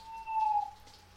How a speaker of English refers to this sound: An owl screeches its protest against the violation of peace. A moment later, its dark shape swoops on a defenseless mouse.